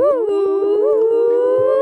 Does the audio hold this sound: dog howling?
yes